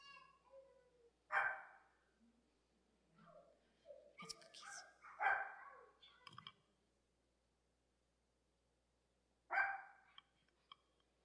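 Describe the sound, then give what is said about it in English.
A dog barks in a few sharp bursts, spaced apart with quiet gaps, alongside some clicking and faint background murmuring. “Brian didn't realize this is Freedom House right here. Got the dogs and the”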